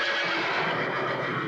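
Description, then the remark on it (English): A horse whinnies in one loud, sustained call that holds steady for a moment with a slightly rough, wavering tone. No one is talking. “Yeah, I'm going to put the horse sounds in.”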